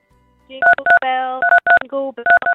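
Phone keypad tones, played by a caller on national radio, beep out the tune of Jingle Bells: loud, sharp dual-tone presses in quick repeated pairs, broken by a sustained buzzy tone and a short lower tone.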